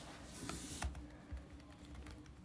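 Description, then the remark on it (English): Sparse, uneven keystrokes tap on a computer keyboard, a slow one-handed typing rhythm of soft clicks over a low steady hum, with no one speaking. “You really just typing with one hand there.”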